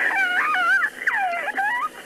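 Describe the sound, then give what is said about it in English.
A girl screams over a phone line during a call to the Albuquerque Police Department, high wavering wails that slide up and down in pitch, broken into a few long cries with short gaps, loud and with no talking. “And screaming is heard before the line goes dead.”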